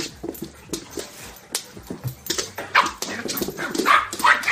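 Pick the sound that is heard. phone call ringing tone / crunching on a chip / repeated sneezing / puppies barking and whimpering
puppies barking and whimpering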